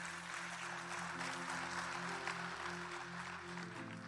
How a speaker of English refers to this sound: Come on, give God a hand clap. Clap for Jesus.